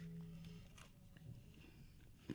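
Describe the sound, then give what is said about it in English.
A crunchy bite into plain fried chicken without the bun, followed by a few quiet chewing crunches and one sharper crackle near the end, with a faint low hum in the background. “Oh, you got a little crunchy on that. A little crunchy bit.”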